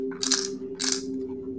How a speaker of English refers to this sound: Hold on, I'm putting my tiny dice away.